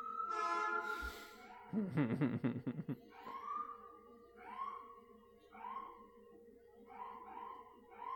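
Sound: emergency vehicle siren outside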